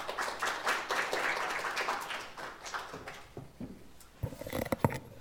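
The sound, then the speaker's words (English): A crowd applauds a guest speaker coming up to share God's word. The dense, steady clapping gradually thins out and fades, ending in a few scattered taps and knocks. “So give him a big round of applause as he comes up and shares God's word with us today.”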